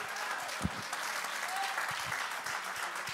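An audience claps their hands unto the Lord in a sustained, dense wash of applause, steady and fairly loud, with a few sharper claps standing out and faint voices murmuring underneath.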